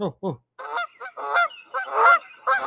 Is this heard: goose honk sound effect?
yes